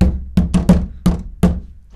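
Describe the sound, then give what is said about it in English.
Loud, heavy pounding on a locked bathroom door: about five or six forceful thuds in quick, uneven succession, with no voices. “The bathroom was locked as I banged the bathroom door. The door still didn't open. I banged some more.”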